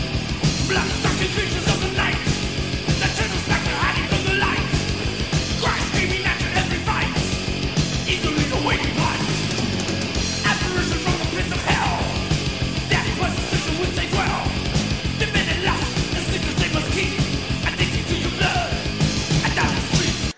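A loud, dense thrash metal chorus: fast pounding drums and distorted guitars drive a steady rhythm while screamed vocals cut through, sustained at full intensity throughout.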